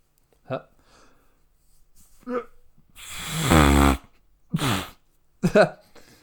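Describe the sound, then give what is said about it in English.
A couple of short breathy puffs, then a loud, buzzy, flapping raspberry blown into an elbow lasting about a second, followed by a shorter raspberry and a final sputtering burst. “Instead of sneezing into your elbow, you blow a raspberry into your elbow.”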